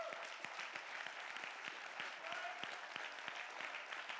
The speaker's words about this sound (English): Go ahead and clap your hands and give God the praise.